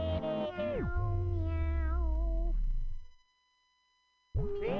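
A cat meows in a couple of loud, drawn-out calls that slide downward in pitch, then goes quiet for about a second before another meow begins at the end.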